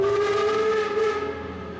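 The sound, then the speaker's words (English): A train whistle blows in one long, steady, harmonically rich tone with a slight waver in pitch, loud, fading a little toward the end. “We have to imagine him lying in bed as a teenager, listening to the trains behind the house and thinking about his future.”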